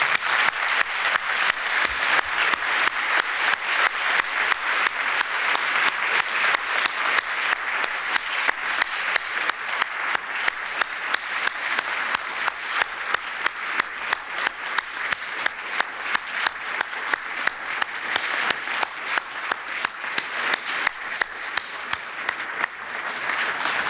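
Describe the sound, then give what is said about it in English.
A large audience stands and applauds steadily for about twenty-four seconds in appreciation of single parents, a dense, sustained wash of many hands clapping at once with no voices rising above it. “Could we all, the rest of us, just stand and let's clap for them in appreciation.”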